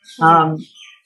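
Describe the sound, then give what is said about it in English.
Birds chirp and twitter softly in the trees outside the big windows of a dining room, a few high, thin calls around a short burst of a person's voice that briefly covers them. “I have this big open dining room with big windows, and we just have all these birds all around in the trees.”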